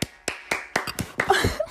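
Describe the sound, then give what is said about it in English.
A round of applause from hand clapping: a quick, steady run of sharp claps that turns busier and more overlapping toward the end, with a few brief vocal squeals mixed in. “And if you're a returning customer, as I always say, we give ourselves a round of applause because we did it, baby, and we deserve it.”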